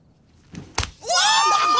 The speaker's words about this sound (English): Double slap. He took it to a new level. Oh my God. He took it to a new level.